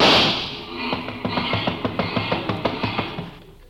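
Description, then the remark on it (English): A car engine revved by a mechanic in a garage runs in a steady string of throbbing, low pulses, about a dozen rhythmic beats after a brief hiss at the start, then fades. “No matter what car comes in, he always races the motor.”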